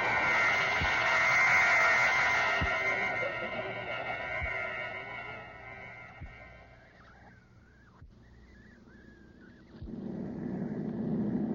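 airplane taking off

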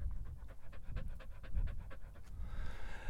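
dog panting heavily

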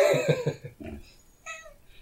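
cat meowing

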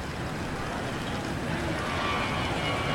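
jet plane flying overhead

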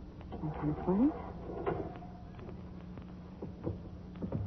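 mausoleum door being opened

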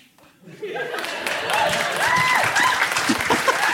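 audience applause and cheering

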